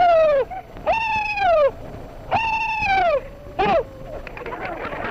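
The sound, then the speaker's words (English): A recording of old soldiers letting out a battle yell in four loud bursts: high, sustained falsetto whoops that wobble and slide downward at the end, with short pauses between and no talking. “I was surprised by how unsurprised I was by the yell. It sounded exactly as I imagined.”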